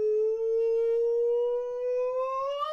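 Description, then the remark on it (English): A single sustained emergency broadcasting system test siren wail that holds steady and then slowly rises in pitch over about three seconds, loud and bright with a rich, buzzy tone and no voices. “This has been a test of our emergency broadcasting system.”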